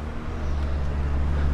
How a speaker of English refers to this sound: Oh, Amazon truck, don't hit me. Don't kill me.